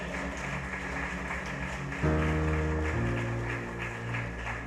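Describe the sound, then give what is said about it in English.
An audience claps hands in a steady, dense wash of applause, and sustained organ-like chords come in partway through and shift once beneath the clapping. “Would you clap your hands and say amen?”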